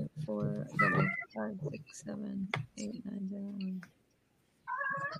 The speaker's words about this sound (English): Crazy cat.